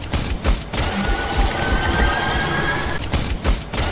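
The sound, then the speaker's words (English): The healing beam of Mercy's staff in the video game Overwatch: a continuous buzzing, crackling stream with a thin, steady whine sustained across the middle, framed by a few sharp bangs at the start and end. “fairly sure that is Mercy's, like, wand stick that she used to heal and buff people.”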